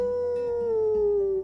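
animal, wolves howling

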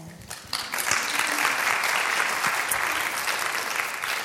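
crowd, audience applauding

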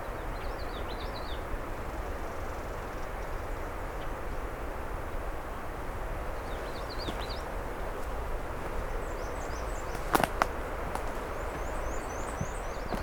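bird, black-and-white warbler song

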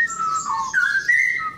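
human body sound, human whistling attempt

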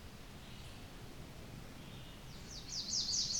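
bird, american Redstart warbler song

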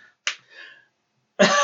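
human body sound, hand slapping own face

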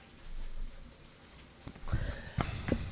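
human body sound, coughing and throat clearing

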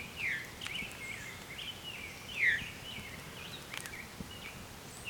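bird, veery thrush call

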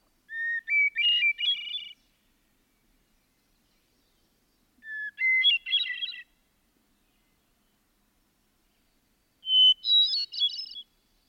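bird, hermit thrush song

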